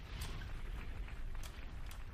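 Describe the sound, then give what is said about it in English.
A bomb explosion sound effect: a deep, continuous rumbling roar lasting a couple of seconds, with a few sharp crackling bursts rising above it and no voices. “Clap it up. Drop a bomb.”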